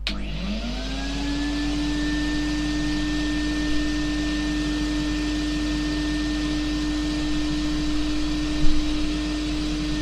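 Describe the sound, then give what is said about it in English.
A vacuum cleaner whines steadily up to speed and keeps droning at an even, fairly loud level, with a sustained motor hum and no voices throughout. “Okay, that was the Hoover.”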